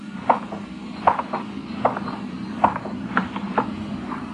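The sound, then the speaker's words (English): Steady footsteps click on the hard pavement of a dark, deserted, quiet street at an unhurried walking pace, about a step every three-quarters of a second, each with a faint ringing echo over a low, quiet background hum. “My footsteps echoed in the quiet street.”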